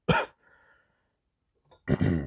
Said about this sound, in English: Smoker's cough. I shouldn't say that. It's cancer. Probably shouldn't say that. It's not COVID. It's fatigue. It's raw.